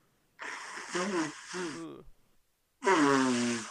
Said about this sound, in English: Oh, I really had to blow my nose.